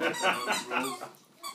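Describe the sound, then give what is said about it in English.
A dog toy squeaker, carried by dogs running around, squeaks several times in quick, uneven succession, with bright, shrill, fairly loud bursts and no talking. “The chaos, the dogs are running around with squeakers,”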